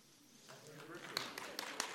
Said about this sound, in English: That's nice. I've never had anybody applaud that before. But I know they had to be for